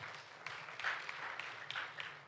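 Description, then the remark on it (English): An audience applauds with a steady, dense patter of many hands clapping, sustained at a moderate, fairly even level for a couple of seconds with a few sharper claps standing out. “Ladies and gentlemen, let's give a hand clap to Leah.”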